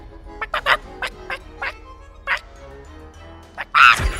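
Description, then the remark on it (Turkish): A hen clucks while laying an egg, in a string of short, uneven bursts, fairly loud, then pauses before a final louder, drawn-out squawk. “Bu tavuk altın yumurtluyor. Hem de horoza ihtiyaç duymadan. Hadi tavuk hadi.”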